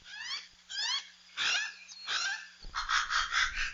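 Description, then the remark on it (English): Hawaiian crows (alala), a velvety black native Hawaiian crow more closely related to ravens, call in a series of raspy, wavering cries, each rising and falling in pitch, followed by a harsher, more grating run of calls at the end. No one speaks. “The alala is a velvety black native Hawaiian crow that's actually more closely related to ravens.”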